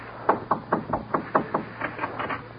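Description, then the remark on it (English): A rapid series of about ten sharp knocks on a wooden door, in two quick bursts, clear with no voices over them. “Go in there and knock on the door.”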